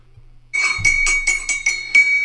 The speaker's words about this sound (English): It was stirring your teacup. Listen.